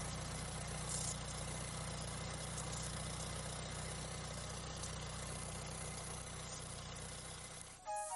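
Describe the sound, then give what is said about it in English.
A tractor engine runs steadily with a low, continuous rumble and faint knocking, holding an even level before a brief change near the end; no one speaks. A man rides the tractor while others follow, emptying sap bags into pails and the pails into barrels for maple syrup. “rides his tractor while others follow, emptying the bags into pails and the pails into barrels.”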